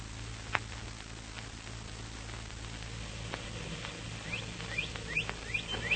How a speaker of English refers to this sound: Birds are waking up